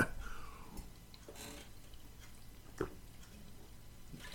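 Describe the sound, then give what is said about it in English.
Quiet slurps and swallows of someone sipping coffee, with a couple of soft wet mouth sounds spaced a second or so apart against a faint hush. “I better sip this coffee here before I, you know.”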